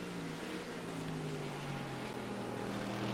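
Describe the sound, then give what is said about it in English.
A race car engine roars continuously as the car accelerates through the gears, climbing the hill from Bergwerk on the track. It is a loud, dense buzzing drone that holds a fairly steady pitch throughout, with no voices. “Accelerating through the gears as he comes up the hill from Bergwerk.”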